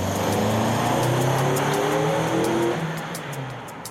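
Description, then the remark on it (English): D.J. Henry's car, in a test conducted by Westchester County Police, accelerates to where Aaron Hess was standing, its engine pitch climbing steadily for a few seconds before the revving eases off and fades slightly. No one speaks. “In it, DJ's car is shown accelerating to where Aaron Hess was standing.”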